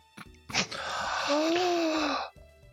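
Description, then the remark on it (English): A sudden sharp gasp of realization that stretches into a long, breathy, half-voiced cry lasting nearly two seconds, loud, then cuts off abruptly into quiet. “Victor just kind of gasps as he just now realizes that you're going to have to fight him”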